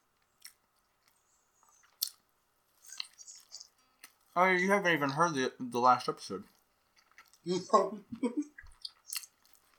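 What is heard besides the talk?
chewing food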